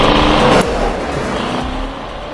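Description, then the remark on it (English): A car engine in a film car chase scene rumbles loudly and steadily for a couple of seconds, with a brief surge at the start before settling into a constant low drone; no voices are heard. “Worst car chase ever.”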